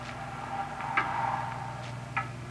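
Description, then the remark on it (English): A loud clock ticks steadily, its sharp clicks standing out over a low, constant hum in otherwise quiet surroundings. “It's a loud clock, ain't it?”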